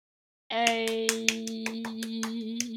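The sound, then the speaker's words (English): Steady, evenly spaced hand claps, about four or five per second, ring out fairly loud over a sustained droning tone that starts abruptly and holds throughout. “A round of applause for you.”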